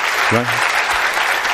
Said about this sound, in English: Okay, give them all applause.